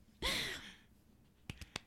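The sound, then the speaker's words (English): A long, breathy exhale, followed after a pause by four sharp hand claps in a quick, slightly uneven burst, the last one loudest. “That's me clapping, not farting or whatever the hell that sounds like farting.”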